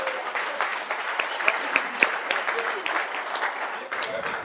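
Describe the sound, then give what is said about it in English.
An audience claps steadily after the speaker asks them to clap their hands, a dense wash of overlapping handclaps with a few sharper individual claps standing out, sustained for several seconds at an even, moderately loud level. “Can you clap your hands at this time?”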